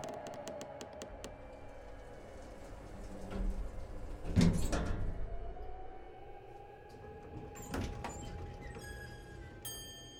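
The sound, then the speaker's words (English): An elevator door slides along its track with a rumbling mechanical whir, rising to a louder clunk midway, over a steady low hum and a few sharp metallic clicks. “I made my way back to the elevator.”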